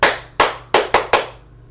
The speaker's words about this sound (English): My hands hurt, too. We were not cheerleaders. Because if we were, we would have clapped like this.